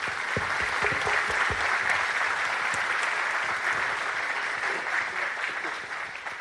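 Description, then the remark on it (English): Steady audience applause for a group of panelists fills the whole stretch, a dense wash of many hands clapping at once, holding loud throughout and easing off slightly toward the end. “So if you please give me help them a round of applause.”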